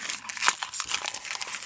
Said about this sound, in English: Sorry about all the noise, but that's a big giant ice cube. Is that? Oh my God. It sounded like you just meat cleaved somebody and you just threw the bloody instrument onto a tin floor.